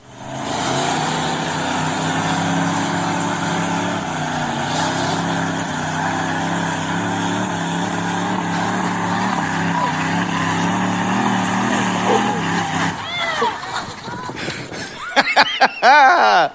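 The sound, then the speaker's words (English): Monster truck engines roar in a loud, steady, heavy drone for several seconds during a monster truck tug of war, then drop away as people break into laughter and excited voices. “There's something really just historic about a good tug of war, and I love a good tug of war, but I think the only thing that I might like more than a tug of war is a monster truck tug of war.”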